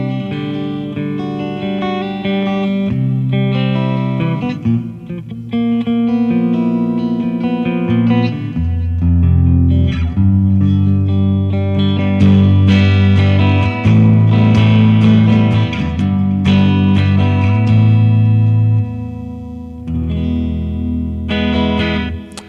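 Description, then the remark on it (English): Warm, clean electric guitar tone from a Seymour Duncan 59 neck pickup, playing sustained chords and melodic runs fairly loud, with a touch of effects and no voices. “But it's got a Seymour Duncan 59 in the neck, which is that neck pickup. That's why it sounds so sweet. Really nice clean.”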